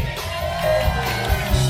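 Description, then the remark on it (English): A modest, lukewarm crowd cheer as a drummer is introduced, a steady, moderately loud wash of voices and scattered shouts lasting under two seconds, with some sustained musical tones faintly underneath. “He kind of gets a lukewarm cheer, but not as lukewarm as … got.”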